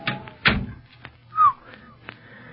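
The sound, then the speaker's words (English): A recently oiled wooden door swings open and shuts with a solid thud near the start, followed by a brief creaking or squeal and a few lighter knocks and shuffles. “Say, that door's been oiled. Squeaked like the dickens the last time we used it.”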